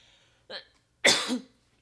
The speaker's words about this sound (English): Excuse me, I'm going to have to cough.